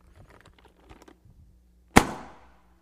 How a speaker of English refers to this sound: Did anybody see the air that came out of this cannon? Nobody saw it, right?